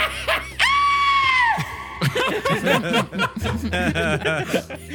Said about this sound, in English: Actually, based on how my intimidation check goes, I will then scream appropriately.